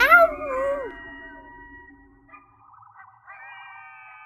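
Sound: coyotes howling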